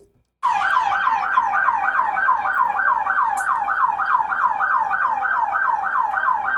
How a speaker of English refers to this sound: Turn the siren up.